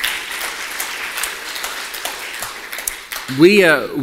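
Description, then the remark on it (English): An audience applauds the news that money raised that weekend has started building school classrooms, with a dense, steady patter of many clapping hands for about three seconds, then a man's voice starts speaking as the clapping fades. “Yeah, you can clap for that for sure.”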